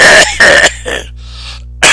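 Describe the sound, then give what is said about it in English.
A person coughs loudly, a rapid series of three or four harsh bursts, a brief pause, then another cough starting. No one talks. “…, the coughing has begun.”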